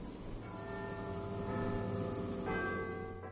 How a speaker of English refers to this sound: Ah, the chimes of Big Ben.